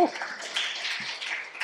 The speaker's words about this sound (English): Give her a little clap.